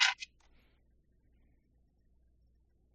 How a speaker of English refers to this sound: I need to roll some dice here. And it's a saving throw, so I don't get to use Uncanny Dodge.